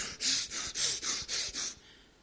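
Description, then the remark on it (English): A person imitates heavy, agitated angry panting, forcing out about six rapid, loud breathy bursts in a steady rhythm, before trailing off into quiet. “The kind of anger that's expressed, and this is what the scripture suggests here, by heavy breaths.”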